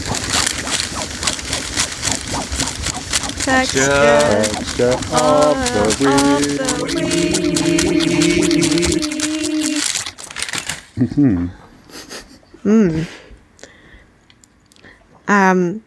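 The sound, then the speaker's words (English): Loud crinkling and rustling of paper fills the first ten seconds, mixed with a sustained vocal tone partway through, before it stops and a voice speaks in short phrases. “I don't have any instruments. I've got some rusting paper.”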